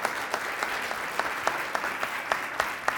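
A crowd applauds steadily, a dense wash of many hands clapping with a few sharper individual claps standing out in a quick, uneven rhythm, moderately loud and sustained throughout.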